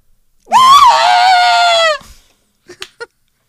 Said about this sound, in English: I hate that fucking terrible pre-recorded, definitely not Sarah Michelle Gellar scream. I'd rather have a Wilhelm scream. It's so bad.